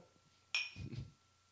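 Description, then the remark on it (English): Glasses of Baileys clink together once in a toast, a bright ring that fades quickly, followed by a dull low knock. No one speaks. “All right, here we go. All right, cheers”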